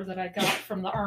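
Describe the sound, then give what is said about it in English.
A single short, sharp sneeze bursts out in the middle of someone talking, loud and close, with speech continuing right before and after it. “Bless you, dog.”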